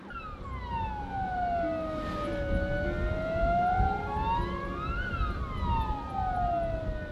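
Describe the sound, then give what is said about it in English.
An ambulance siren wails in slow, sweeping rises and falls, loud, over a low rumble of traffic, with no one speaking. “The ambulance will get there, and the driver too is ready for the action.”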